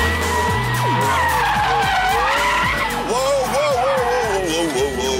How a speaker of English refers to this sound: So the car is like spinning out,